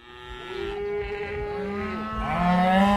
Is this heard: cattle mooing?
yes